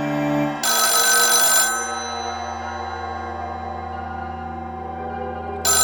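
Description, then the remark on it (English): A loud old-fashioned telephone bell rings in a harsh metallic burst, falls silent with a lingering tonal hum, then starts ringing again at the very end. Piercing, no voices. “And then it rang.”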